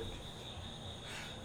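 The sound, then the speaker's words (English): A faint, steady chorus of mating frogs calling outdoors in late August, a continuous high trill hanging over low background hiss, with no voices. “Frogs are still fucking.”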